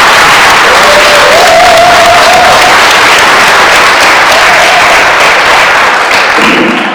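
Sustained audience applause, a dense wash of many hands clapping that stays loud for the full seven seconds, with a faint tonal whine running briefly underneath and tailing off at the end.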